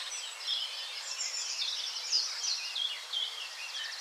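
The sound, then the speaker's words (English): Blackbird song in a wood in southern England, several birds singing the same tune, rises from a busy, steady mix of high chirps and trills, moderately faint, with overlapping calls running continuously and no voices. “I started to notice the songs being sung by blackbirds.”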